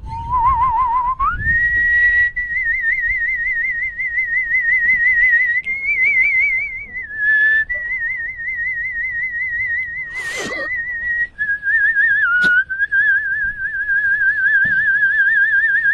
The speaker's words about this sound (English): He's whistling in already. That's out. Did you whistle in there?